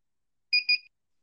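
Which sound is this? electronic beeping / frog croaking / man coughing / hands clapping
electronic beeping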